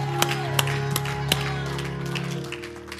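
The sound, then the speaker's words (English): A handful of sharp, scattered hand claps ring out over a steady, droning low tone, with no clear shouting from the church audience standing out, as they give the Lord a hand clap and a shout before being seated. “Give the Lord a hand clap and a shout before you're seated.”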